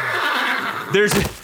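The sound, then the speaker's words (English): A single short horse whinny from a video game, shrill and wavering, bursts out loud after a brief stretch of faint noise, then quickly fades. “Wait, let's ask the horse.”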